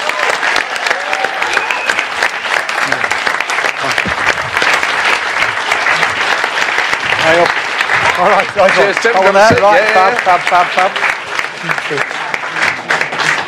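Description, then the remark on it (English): Loud, sustained applause from an audience welcoming Tim Farron, leader of the Liberal Democrats, a dense steady clatter of clapping lasting throughout, with whoops and cheering voices rising through it toward the end. “Please give a massive, massive welcome to the leader of the Liberal Democrats, Tim Farron.”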